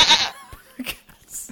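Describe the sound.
A goat lets out one loud, harsh bleat, followed by a few quieter scattered sounds and a brief high-pitched hiss near the end. No one speaks.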